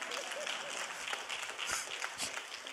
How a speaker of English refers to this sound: Oh, if you're going to clap, clap. Don't give me a petty clap.